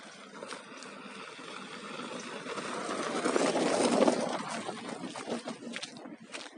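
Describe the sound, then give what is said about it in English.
A car passes along a forest trail, its steady rumbling hiss swelling to a peak partway through and then easing off again, with no voices over it. “There's another car coming.”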